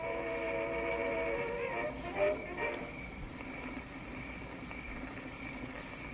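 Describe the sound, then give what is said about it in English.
Crickets chirp in a steady, rhythmic pulse throughout a film scene between Celie and Shug with no music, moderately faint over a low background rumble, with a soft tonal drone in the first couple of seconds that fades away. “You know, there was a record player playing in the background, and then all we hear are like the crickets.”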